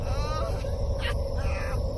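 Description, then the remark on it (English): A bird calls several times in quick succession, harsh harmonic cries with one sharp squawk and a falling note, over a steady low rumble of background noise. “It's a stupid bird! A dumb fucking bird!”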